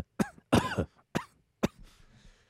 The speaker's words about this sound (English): It's meant for horses. Of course it is. So that's why you cough, because it's so strong in your chest.